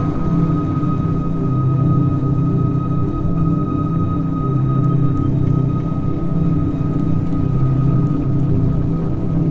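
A truck engine rumbles steadily and loudly, with a deep, constant drone and a faint tonal whine above it that holds throughout without pause. No voices.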